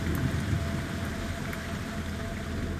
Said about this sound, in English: The air is dense, wet. It's been raining heavily overnight.